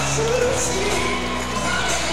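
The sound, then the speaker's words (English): A basketball crowd roars after Brendan Tees puts back his own rebound for 2 points, a steady, dense wash of cheering and shouting that stays loud for the full two seconds, with a few higher voices rising out of the noise. “Brings his crowd to their feet just about.”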